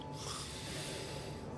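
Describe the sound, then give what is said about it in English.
A person imitates the snore of a sleeping guard: one steady, raspy, snorting breath held for over a second, fairly quiet and unbroken, with no talking around it. “And then he snores.”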